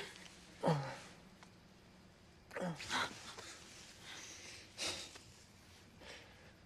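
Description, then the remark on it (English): Heavy, gasping breaths from a kissing scene in a movie come in a few sharp bursts with short pauses between them, loud, against a low background hum and with no clear talking. “Just yeah, aggressive weird breathing. Gasping breathing.”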